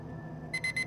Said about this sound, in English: The alarm sounded and his world dissolved.